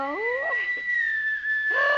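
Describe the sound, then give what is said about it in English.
A teakettle whistles steadily at a high, shrill pitch for two seconds, with rising, wavering swoops at the start and again near the end as it comes to a boil. “Oops, sounds like she's coming to a boil.”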